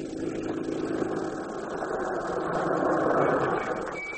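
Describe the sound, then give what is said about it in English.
A police car's engine rumbles steadily and grows louder as the car draws near, swelling to a peak before easing off as it pulls up. No one speaks. “Looks like a police car.”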